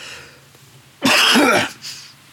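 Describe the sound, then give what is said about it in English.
A single harsh cough that rolls into a rasping throat clear, loud and brief, with a small trailing breath after. “I need a cough button.”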